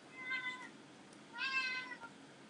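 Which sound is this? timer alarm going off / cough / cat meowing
cat meowing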